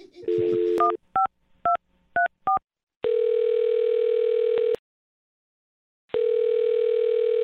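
A brief dial tone gives way to a quick series of touch-tone keypad beeps as a host of the radio show Brook and Jubal in the Morning dials a woman's phone number, followed by two long, steady ringing tones separated by a pause, clear, with no voices.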